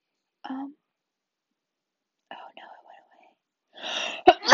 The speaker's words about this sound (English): Oh, I just sneezed again, I'm sorry.